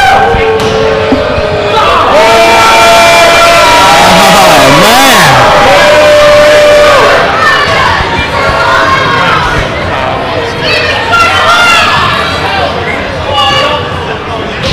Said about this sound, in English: The crowd doesn't like him, I can tell you that much. Yeah. I'm hearing a lot of boos out there. No, it's just really this loud-ass guy right next to us.